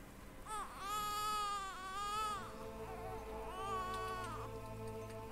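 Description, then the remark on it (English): A baby wails in three drawn-out, high-pitched cries, each rising and falling, with a short pause before the last one; loud and alone, with no talking. The crying comes from behind the door on the left side of a room. “as you step into the room, you hear a baby crying.”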